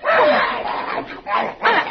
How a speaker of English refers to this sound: I hear a dog. Oh, it must be next door at Waldo's house. It's right in this house, in the living room.